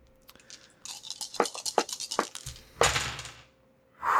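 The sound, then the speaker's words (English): Four dice, one of them a bonus hope die, clatter: a quick run of sharp clicks as they are shaken, then a louder rattling tumble across a surface that fades out. No one speaks. “And I am rolling 4 dice because I rolled 2 ones last time.”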